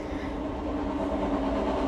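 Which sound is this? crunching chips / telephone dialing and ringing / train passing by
train passing by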